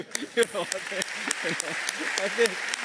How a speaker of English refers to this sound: We should really, I don't know the tradition here, but usually we give the worship team a big round of applause for what they have done, you know, for the glory of the Lord. Can we do that?